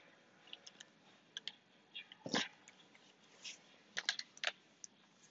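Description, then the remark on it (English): A dog that keeps trying to bite the speaker gives a short, sharp bark among scattered small yelps and clicking noises, fairly quiet overall with no one talking. “Someone tell me why this dog keeps trying to bite me.”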